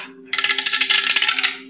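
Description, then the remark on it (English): A small eight-sided die, rolled for weapon damage in a tabletop role-playing game, clatters across a hard tabletop in a quick run of rapid, bright clicks that lasts about a second before it settles, over a faint steady hum. “Go ahead and roll... we'll do a D8 of damage.”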